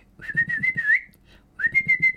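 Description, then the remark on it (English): A person whistles to call a bird with a damaged wing that they feed bread every day: two sustained, slightly rising notes separated by a brief pause, the tone clear and fairly loud, with a faint low fluttering murmur underneath. “I feed him bread every day. And I do this little whistle.”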